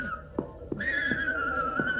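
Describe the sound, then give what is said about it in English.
A horse named Sammy whinnies in one long, high, drawn-out call that jumps up in pitch partway and slowly sinks, with a few soft knocks like hooves shifting underneath. No one speaks. “This here is my horse, Sammy.”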